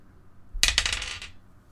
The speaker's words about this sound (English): All right, one more good dice to roll.